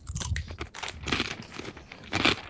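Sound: eating crunchy potato chips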